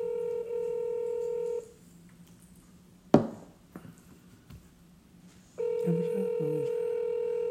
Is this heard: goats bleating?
no